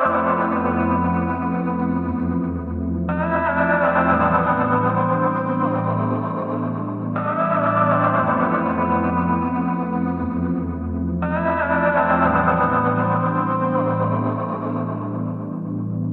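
A recorded song plays steadily with dense, effects-laden instrumentation, a sustained low bass line and bright layered chords that swell in repeating sections every few seconds, loud and without speech.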